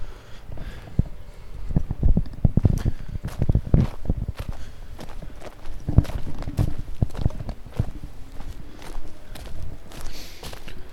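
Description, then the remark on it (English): Footsteps crunch along a bark pathway in a redwood area in a steady, slightly uneven rhythm, each step a soft, scuffing thud with a dry crackle, continuing throughout with no talking. “Stepping onto the bark pathway now.”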